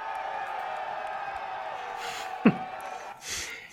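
A crowd applause sound effect, played to welcome a guest, rolls steadily for a couple of seconds, a dense wash of clapping and cheering, then thins out after a single sharp knock, ending with faint breathy noises.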